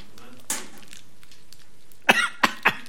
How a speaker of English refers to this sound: I'm still coughing. Can God speak through a coughing preacher?